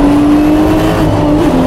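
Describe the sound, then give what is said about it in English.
A loud turbocharged race car engine accelerates through a race turn as the turbo kicks in, droning steadily with a strong low rumble and a sustained tonal whine, continuous through the whole moment, with no voices. “Now the turbo kick in here.”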